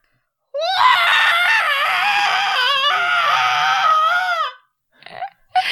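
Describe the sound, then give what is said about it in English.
A human voice lets out a long, loud, wavering screech imitating a crow's cry, harsh and strained for about four seconds, followed by a couple of short breathy sounds. “screams as a crow”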